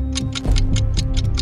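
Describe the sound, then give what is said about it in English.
A clock ticks steadily, about four crisp ticks per second, over a low sustained musical drone. The ticks are clear and evenly spaced, with no voices. “But as you step back, the clock begins to tick.”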